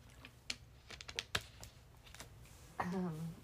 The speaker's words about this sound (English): Let me take a sip really quick. I'm telling you guys, I've been having to stop a lot, so.